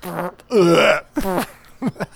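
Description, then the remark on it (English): A string of four close, throaty belches. The second is the longest and loudest, a drawn-out croaky burp, and the others are shorter and gurgling, with brief pauses between them. “Let's go back and forth between the belch, the fart, and the belch.”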